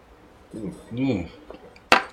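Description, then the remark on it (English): A single sharp clink of glasses touching in a toast, bright, lands right after a couple of short voiced utterances, its ring fading quickly. “Cheers, we'll still Austin Cheers.”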